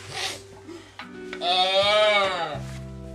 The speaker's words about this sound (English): Sounds like a baby cow.